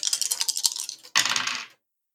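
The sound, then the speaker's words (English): Three dice are rolled across a table for a tabletop game roll: a second of rattling clicks, then a louder burst of tumbling clatter that stops abruptly, followed by silence. “So that is three dice.”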